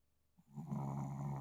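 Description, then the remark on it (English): A low, rumbling snore swells in after a brief quiet moment and carries on steadily, soft, with no one talking. “I wonder if his snoring is picking up on the mic.”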